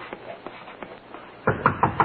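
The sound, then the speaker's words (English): Police knocking on a door: a series of soft, evenly spaced raps, then four louder, heavier knocks in a steady rhythm. No voices. “And what's that? It ain't a woodpecker. See what it is”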